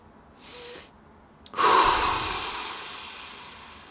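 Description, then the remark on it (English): A breathing sequence with no talking: two quick inhales through the nose, the second only a brief sniff, then a louder, longer breath out through the mouth that slowly fades. “We're breathing in as much as possible.”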